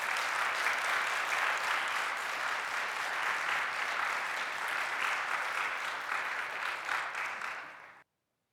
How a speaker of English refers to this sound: These two individuals have done their field service work among us. They are valued assets to this community. We thank you. Round of applause.